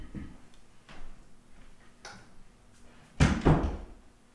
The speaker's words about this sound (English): Here, let me shut my door.